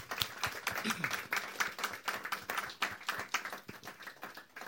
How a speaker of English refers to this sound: Round of applause. Yeah.